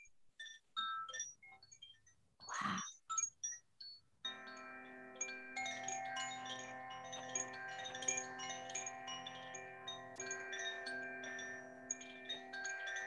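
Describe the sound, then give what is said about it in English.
Tuned chimes with a bamboo outer, stainless steel inner and a crystal inside tinkle in scattered bright strikes, then swell into a steady, shimmering ring of layered overtones that sustains to the end, with no voices. “They're made bamboo outer with stainless steel inner. They have a crystal inside them.”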